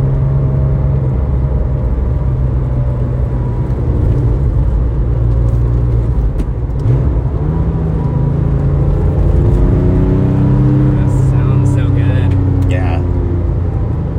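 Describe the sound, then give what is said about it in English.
A 911 GT3 sports car engine roars steadily, its deep, loud drone climbing in pitch as it revs and accelerates through the second half. “So does it live up to the hype of the GT3?”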